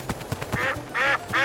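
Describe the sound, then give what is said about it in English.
A duck quacks three times, loud, nasal and raspy, the calls coming in quick succession after a few soft taps at the start. No one speaks. “Oh, hey there, Duck.”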